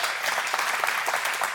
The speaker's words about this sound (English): So would you just give those a round of applause who help in those ministries?